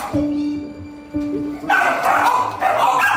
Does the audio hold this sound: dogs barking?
yes